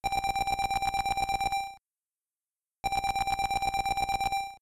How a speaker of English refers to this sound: I like this one voice in the background. It's just a single note that repeatedly attacks, and it goes on and off every other measure, and again with some single channel echo applied to it. Here's what it sounds like.